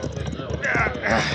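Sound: horses' hooves clip-clopping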